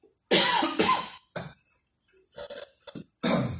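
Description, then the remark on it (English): A loud coughing fit: a couple of heavy, harsh coughs, then a quieter scatter of short throaty hacks, ending with one more strong cough. No talking. “Oh, man, that cough just knocked my thought out of my head.”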